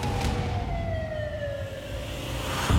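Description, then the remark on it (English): An ambulance siren wails steadily as paramedics take a wounded shooting victim to hospital, its pitch sliding slowly downward as if passing by, over a low rumble of traffic, with a brief thump near the end and no voices. “With his life on the line, paramedics load Tommy into an ambulance.”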